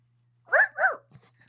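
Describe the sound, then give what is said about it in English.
A person imitates a small dog's yapping with two quick, high-pitched barks in a row, close and fairly loud, followed by a faint short sound and quiet. “We can pretend there are several different types of dogs in here.”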